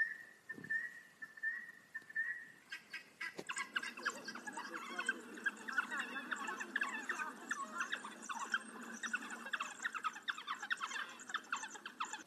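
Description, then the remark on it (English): A person imitates an African wild dog call, starting with a steady high whistled tone, then breaking into rapid, shrill, bird-like chirps and squeaks that continue loudly without speech. “It was a African wild dog!”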